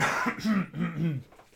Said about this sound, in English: hang on, just let me clear my throat.